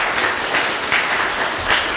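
A crowd breaks into steady applause, many hands clapping together in a dense, even wash of sound that stays loud throughout with slight swells.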